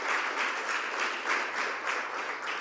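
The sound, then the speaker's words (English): A crowd at a church sermon applauds for Jesus, many hands clapping together in a dense, continuous patter with slight swells in loudness, and no voices over it. “Can you clap for Jesus?”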